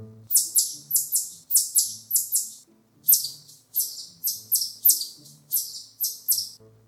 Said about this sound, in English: So they make these three basic sounds. They have a chip trill, which is for defending territory, and they do this while they're running. And this is what it sounds like.